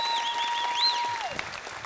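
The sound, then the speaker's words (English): Steady audience applause for the pastor's kids, a dense crackle of many hands clapping, with a sustained high tone gliding downward near the end before the clapping thins slightly. “Come on, give it up for the pastor's kids as well.”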